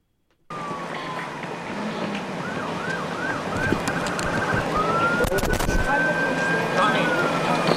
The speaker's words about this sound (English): By the way, you hear that siren? That mm-hmm. is another tribal officer in a pickup truck approaching from the breakdown lane at a rapid speed.